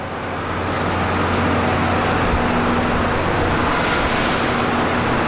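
A car drives through a parking garage at a wrestling event and runs over wrestler Steve Austin. Its engine produces a loud, steady roar with a low hum that holds for several seconds without any talking.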